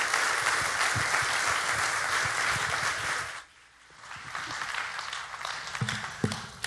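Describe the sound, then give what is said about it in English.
Steady audience applause at a church, welcoming a pastor: a dense crackle of many hands clapping that briefly dips near the middle and then resumes with a few sharper claps toward the end. “Thank you for that applause, and I appreciate it.”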